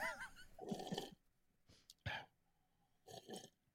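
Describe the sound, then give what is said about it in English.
Someone slurps the last little bit of a drink from a cup: a few wet, gurgling sucking bursts come in uneven spurts, with short quiet gaps between them and no talking. “I got a little bit left, but you know, you got to hear the slurp though.”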